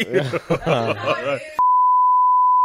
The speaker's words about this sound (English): beeped that